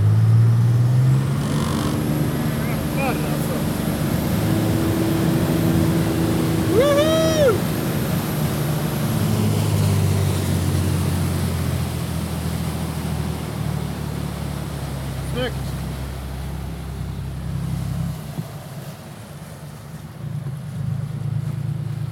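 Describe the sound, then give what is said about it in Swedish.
A rescue boat's engine drones steadily at high speed as the crew heads home. It is a loud continuous low rumble with rushing wind and water noise, and a brief whistling tone partway through. “men det blev inga uppdrag, utan vi drar hemåt igen då.”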